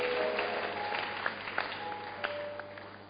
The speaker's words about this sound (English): Thank you, Lord. Clap your hands for Jesus, and you may be seated.